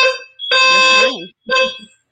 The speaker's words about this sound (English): I think they're testing the fire alarm.